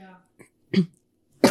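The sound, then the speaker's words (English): After a brief bit of voice, someone clears their throat a couple of times and then breaks into a loud, harsh cough in short irregular bursts. “This is going to happen if I keep talking. I do have cough drops with me.”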